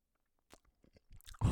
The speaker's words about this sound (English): But now, for now, you're just going to have to listen to my chewing noises. So, here we go.